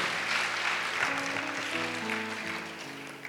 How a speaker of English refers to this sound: Clap for Jesus. Clap for the power of prayer.